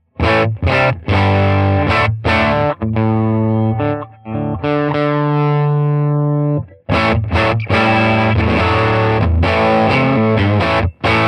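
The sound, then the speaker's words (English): A dirty, overdriven tweed-style guitar amp plays loud, crunchy chords with choppy strummed stabs, a sustained ringing chord in the middle, then more aggressive strumming; no one speaks. “I'm going to dial this amp up to be pretty, pretty dirty here.”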